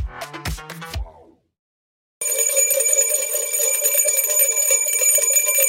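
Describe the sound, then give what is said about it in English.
A bell rings out twice in quick succession, loud, its ring fading into a short silence before a dense, steady ringing tone takes over. “It's a Two Bell Tuesday.”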